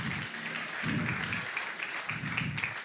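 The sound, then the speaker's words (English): An audience applauds contestants in a Bible quiz with a steady wash of clapping, a dense crackling texture that fills the whole moment, while a low voice briefly murmurs underneath. “Can you give our contestants a round of applause?”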